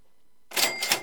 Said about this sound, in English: There, the cash register. And that's how you know it's a deal of the week.